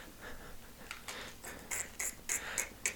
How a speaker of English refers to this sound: Please stop jingling the nerds in your pocket and just answer me the question.